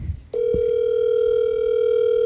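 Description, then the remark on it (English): A steady electronic ringing tone of an outgoing phone call starts after a short thump and holds unbroken and fairly loud to the end, with no talking over it. “Let's hope he picks up.”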